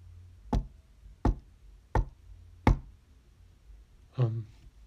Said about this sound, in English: That's when she heard a knock.